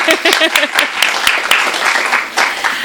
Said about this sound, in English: Since 2013, Sarah Scribbles has been beloved by giant crowds of rabid fans. That's us. let's give a hand to us and how much we love her.